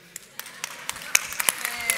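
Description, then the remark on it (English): Scattered, uneven clapping from a small crowd, fairly quiet, with a soft murmur of voices underneath, as an audience reacts to plans for a new children's building. “Those that are clapping, no, I feel you.”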